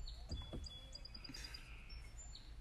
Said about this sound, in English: Oh, wait, that's a bird doing the same exact thing.